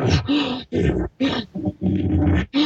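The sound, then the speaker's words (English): A person imitates a cow elk with a series of loud, breathy heaving pants and guttural grunts in short bursts, with brief pauses between them and no talking. “And the cow, whine it a little bit, stomp, heave, give some of those heaving pants, you know.”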